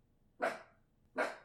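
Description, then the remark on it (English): A female dog barks twice, two short, sharp woofs a little under a second apart, with nothing else going on around them. “I'm the world's best and worst guard dog.”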